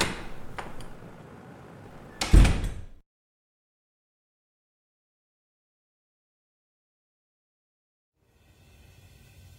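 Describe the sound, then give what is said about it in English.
A door opens with a brief rustle and shuts with a single solid thud as a man walks out. Long silence follows before faint music begins. “I might be late, he said and walked out the door.”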